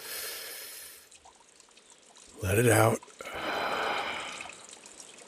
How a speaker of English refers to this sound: Settle in, get comfy, and just enjoy the sound of the creek and some relaxing music.